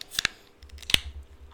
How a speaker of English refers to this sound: Cheers! How many cans did you open over there? Fucking Christ. Two-fisted today. I'm really thirsty.